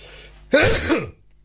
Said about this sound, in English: Hey, you know, the show's live on air because there's a big sneeze.